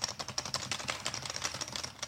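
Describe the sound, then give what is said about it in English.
Rapid, clicky keystrokes rattle away on a mechanical keyboard as a Foley effect, a steady run of sharp taps with no one speaking. “The FBI supplies only mechanical keyboards to their agents.”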